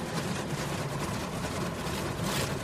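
Car wash brushes spin with a steady, dense whooshing roar and a faint rhythmic swish, with no voices throughout.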